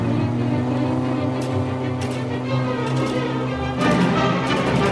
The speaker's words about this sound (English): Can't this thing go any faster? It can only go 73 miles per hour. Oh great, we're driving the slowest car ever known to take part in a chase scene, and it's about to be overtaken by short, crappy eco-cars!